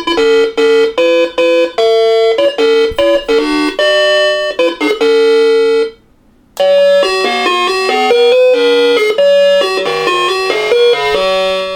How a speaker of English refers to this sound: Now, if I was to go ring the doorbell, I would hear that song.